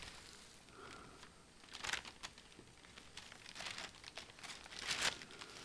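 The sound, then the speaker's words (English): Paper crinkles and crumples, with irregular crackling bursts that swell louder in a few sharp rustles, no voices present. “It's all pencil and paper back then. Mm-hmm. Yeah, and the paper looked like this.”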